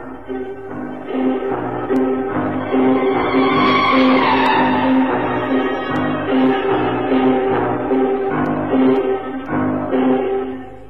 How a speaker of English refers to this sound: I took a bus to the old Brompton Road, and then I wished I hadn't. The chattering of the passengers, the grind of the gears.